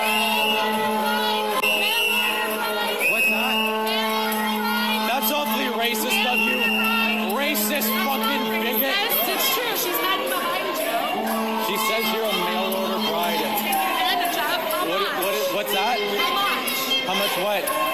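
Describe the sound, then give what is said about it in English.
A loud, dense crowd of protesters at a social justice protest shrieks and yells continuously, with shrill sustained whistle tones from the protesters blowing whistles cutting through the chaotic din for the whole stretch. “So you hear all the shrieking, and the new thing is them all blowing whistles.”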